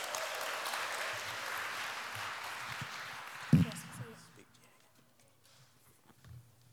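A church audience claps together in a steady, dense wash of applause for a young person coming up to read a passage from Isaiah, fading out after about four seconds, followed by a single thump and quieter shuffling.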